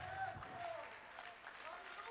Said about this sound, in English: Every man and woman, clap your hands to the Lord, will you? Will you give him some praise?